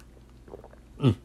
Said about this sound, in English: Sorry, I needed to take a sip of my iced tea.